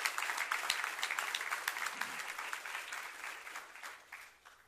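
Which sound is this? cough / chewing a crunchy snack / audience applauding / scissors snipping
audience applauding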